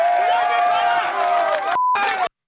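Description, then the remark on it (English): A loud, dense crowd at a protest cheers and applauds with many voices blending together as police pick off demonstrators one by one. It breaks off briefly, returns, then stops abruptly. “Demonstrators were picked off one by one to rounds of applause.”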